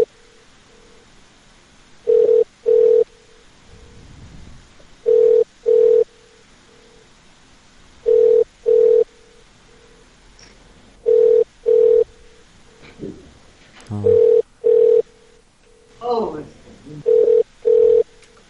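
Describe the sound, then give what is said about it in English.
A telephone line rings over and over with no answer, steady double-pulse rings repeating every few seconds, joined near the end by brief muffled voices and clatter in the background. “I bet they just put you on infinite loop line just to old. Ain't no one picking it up.”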